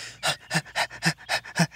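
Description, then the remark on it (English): Quick, rhythmic dog-like panting by Trusty, panting to cool down, about six short huffing breaths in under two seconds, clear with no talking; it may be a person imitating a panting dog. “No, I'm panting. Panting is how ecto and endothermal animals like dogs, badgers, deer, frogs, and even some birds cool down.”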